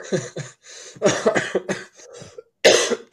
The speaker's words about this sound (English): No, I've got a little bit of a cough from hanging out with cats.